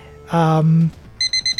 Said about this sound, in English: And there's the beep.